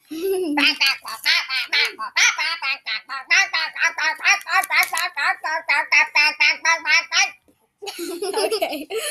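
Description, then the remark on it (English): A person imitates a duck with a long, rapid string of nasal quacks, loud, running for several seconds before a brief pause and more vocal noise. “I'm a duck now.”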